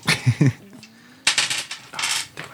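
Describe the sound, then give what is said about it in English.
Dice being fumbled as someone tries to grab them, clattering on a hard table: a few scattered bursts of small rattling clicks with short pauses between them, no voices. “That's me trying to grab my dice and not working.”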